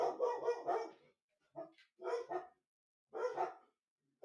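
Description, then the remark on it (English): A dog barks loudly in several quick clusters, sharp repeated woofs separated by short pauses, with no talking over it. “At least not my dog.”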